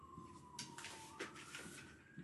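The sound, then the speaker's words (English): An ambulance siren drones faintly as it passes outside near the Queen's Medical Centre, a large hospital, a thin sustained wail that slowly shifts in pitch, with soft rustling and shuffling noises and no one speaking. “Yeah, so if you'll probably hear ambulances quite often through here.”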